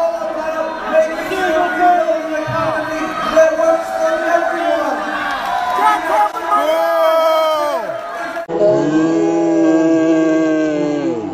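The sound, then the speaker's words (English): A loud crowd of students boos and heckles, many voices shouting over one another about single payer and getting corporate money out of politics, in a sustained din that swells and shifts without a break for the full stretch. “So what the students were yelling about, if you didn't hear them because there's a lot of boos and heckles, was single payer.”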